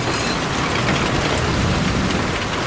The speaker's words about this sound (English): Oh my God, it's absolutely pouring it down now. This is terrible weather. Anyway, oh, can you hear the thunder? Come on, you've got to hear this. This is amazing.